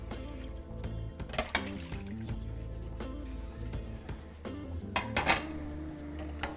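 Dishes being washed under running water, with a steady watery wash and occasional sharper clinks and splashes of crockery, continuous, with no talking.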